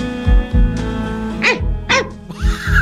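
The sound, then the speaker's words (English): A man sitting on a bed imitates a dog, letting out three loud, rough barks in quick succession over a steady tonal hum, with a couple of dull thumps before the first bark. “I also wanted to run it back to that cut where the guy is sitting on the bed and barks.”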